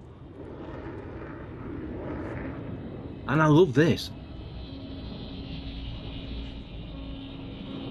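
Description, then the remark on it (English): A steady mechanical hum from a drone hovering at a front door drones on throughout at moderate level, with a faint tonal whine emerging in the second half; a voice briefly speaks over it midway. “We got a drone at the front door.”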